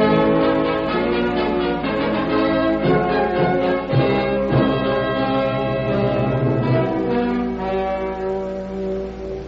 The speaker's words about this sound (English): Try the doorbell again